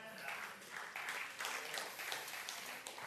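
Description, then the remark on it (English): A thin, scattered round of applause from a handful of people, the uneven claps running at a steady moderate level for about three seconds. “Thank you for that scant applause.”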